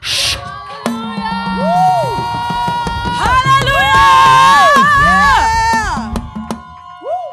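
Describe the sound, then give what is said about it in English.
A church audience roars and cheers in intentional praise, a loud, sustained wall of voices with rising and falling shouts and whoops standing out above the crowd noise for several seconds before it fades. “I want to hear you roar loud one more time. Intentional praise.”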